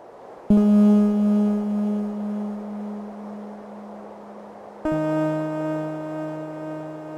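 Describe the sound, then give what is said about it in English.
Two sustained synthesized video game tones, generated by falling snowflakes, each starting with a sharp onset and ringing with rich, evenly stacked harmonics; the second enters on a different pitch, sounding clearly with no talking. “there are all these different kinds of snowflakes that are falling down, and the different snowflakes generate different kinds of tones. Some of them will play octaves.”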